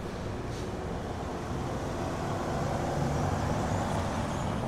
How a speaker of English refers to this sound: Here comes a car. Oh, it's our friend Mercedes.